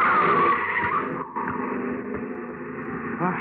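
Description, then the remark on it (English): A car's tires screech loudly in a sustained, high-pitched skid that fades into engine rumble as the vehicle slows to a stop, with no one speaking. “Mind that car.”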